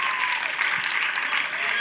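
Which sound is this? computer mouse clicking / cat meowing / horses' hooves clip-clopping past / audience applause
audience applause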